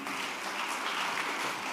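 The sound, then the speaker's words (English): An audience claps steadily, a dense wash of many hands at an even, moderate loudness throughout the short stretch, with no voices standing out over it. “Why are you not clapping?”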